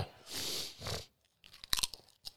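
A loud, brittle crunch of a ghost pepper chip being bitten, followed by a pause and then a quick run of sharp, crackling chewing crunches, with no talking.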